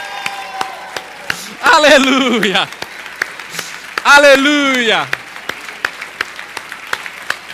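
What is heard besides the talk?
audience applauding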